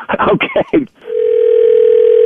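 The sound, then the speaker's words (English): A voice speaks briefly, then a telephone dial tone starts as someone calls the school principal: a steady, unbroken, mid-pitched hum that holds at a constant loudness until the end. “I'm calling the principal.”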